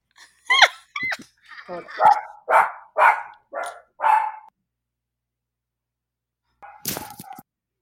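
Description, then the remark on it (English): The speaker's dog barks in his room in a quick run of about seven sharp, loud barks, falls silent, then lets out a short, harsher burst of noise a few seconds later. “I'm sorry, my dog. Hey, get out of my room.”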